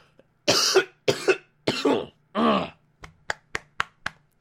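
Four loud, harsh coughs in close succession, followed by a quick series of short, sharp clicks or taps. No one speaks.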